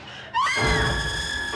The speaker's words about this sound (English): Yeah, and let's talk about his screaming too. We actually hear a woman scream.